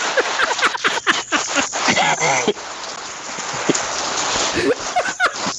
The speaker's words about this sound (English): Just randomly starts raining.